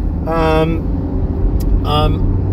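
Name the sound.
car interior road noise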